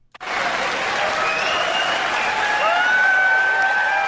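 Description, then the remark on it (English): Sustained audience applause, a steady dense wash of clapping that starts abruptly and holds at a loud, even level, with faint whistles or cheers rising above it near the end. “Crowd loves it.”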